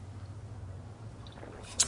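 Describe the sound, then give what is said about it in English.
A quiet sip of a coffee and espresso mix, a few soft wet mouth sounds ending in a brief slurp, over a steady low background hum. “I got to get a little more coffee in. Sip a coffee espresso mix for the working man.”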